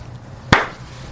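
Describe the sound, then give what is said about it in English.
A single sharp clap cracks out once over a low steady hum, then fades quickly, leaving the rest quiet; only a couple of people clapping at the end of a performance. “And at the end of it, everyone didn't clap, or only like a couple of people like.”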